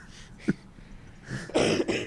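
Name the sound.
coughing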